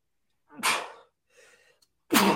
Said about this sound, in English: Bless you.